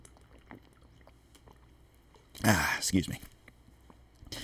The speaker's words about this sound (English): Hey, look at that. Drinking water today, guys.